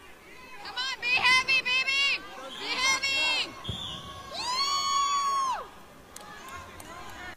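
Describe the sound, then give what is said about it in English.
Spectators yell loudly and repeatedly at a children's wrestling match, a woman shouting "Be heavy!" at a 46-pound boy wrestling: high, strained shouts rise and fall in bursts over a constant crowd murmur, with a sharp thud partway through. “That you hear …'s the one yelling in the background”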